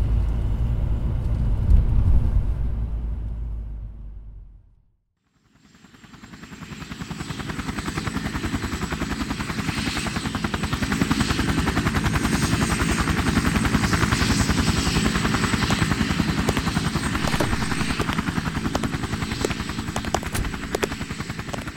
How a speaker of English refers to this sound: A helicopter? Now I know who rates around here.